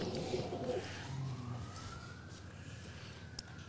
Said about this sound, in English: And gentle listeners, I can 95% say that those sirens you're hearing are not for us. Not yet.